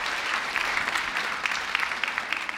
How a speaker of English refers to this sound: Let's stand and worship. Let's give a hand clap to our praise band today. So awesome. Thank you.